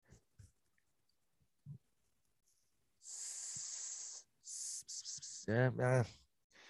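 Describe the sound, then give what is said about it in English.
A person imitates a snake with a long, steady hiss, then several shorter hissing bursts, ending in a brief voiced, laugh-like sound. It's fairly loud, with quiet pauses before. “Every Tuesday from noon to 10 p.m., you have to make an animal sound. What would it be? Snake.”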